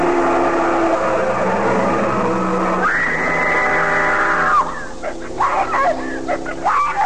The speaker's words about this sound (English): The truck had tried to run me down, and it would have if she hadn't screamed.